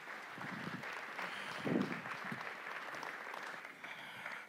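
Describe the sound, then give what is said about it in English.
An audience applauds steadily, a dense crackle of many hands clapping at an even level for several seconds, with faint voices mixed in, as a guest is welcomed onto the stage. “Let's give a little round of applause for.”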